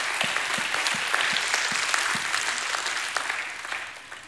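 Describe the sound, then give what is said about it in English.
A crowd breaks into sustained applause, giving God a hand clap, many hands clapping densely and steadily for several seconds before starting to thin out at the end. No voices stand out above the clapping. “Go ahead, give God a hand clap.”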